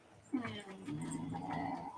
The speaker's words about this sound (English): There's my fucking dog over there groaning and moaning.